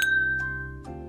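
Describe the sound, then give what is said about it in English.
Glasses clink together in a toast, a bright ringing tone that lingers, followed by a couple of softer taps as the glasses touch again. No one speaks. “Let's taste this thing and jump in tonight, yes, dude. Please. Let's do it. Here we go. Cheers.”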